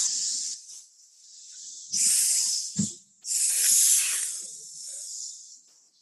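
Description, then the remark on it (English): A snake hisses loudly in several long, breathy bursts, with brief pauses between them and one short sharp thump in the middle. “Oh shit, there's a snake.”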